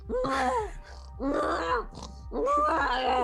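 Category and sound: vocal imitation, voice imitating loud snoring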